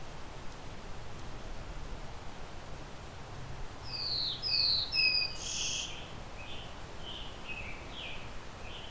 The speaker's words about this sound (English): That's pretty loud. Scarlet tanager directly behind me.